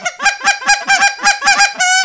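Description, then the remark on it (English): A goose call blown without hands in a quick, rhythmic run of about eight sharp, nasal honks, ending on a longer held note. Loud, with no talking. “All these sounds are completely – every sound on a goose call you can do without hands.”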